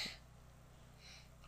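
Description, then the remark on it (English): One quick, sharp sneeze bursts out right at the start, not loud, then fades into a quiet hiss with no talking. “Bless you.”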